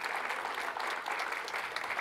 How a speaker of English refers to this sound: Wonderful missionaries we support. Give them a hand clap.